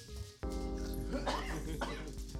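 A dog yips and barks in a quick, excitable burst that starts abruptly and carries on for a couple of seconds over a steady humming background.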